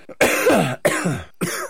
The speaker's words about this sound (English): I still haven't kicked this sort of terrible sickness. This cough you've had, yeah.